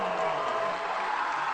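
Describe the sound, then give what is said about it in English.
A crowd at a high school basketball game between Hastings High and Adams Central applauds the national anthem singer steadily, a dense, hissing wash of clapping with no pauses and no distinct voices, holding at an even, fairly loud level throughout. “Biggest applause of the night for the national anthem singer here tonight.”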